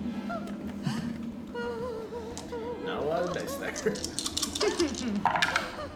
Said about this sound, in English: A lot of dice there. Hey, there's a six. There's a six. That ain't bad.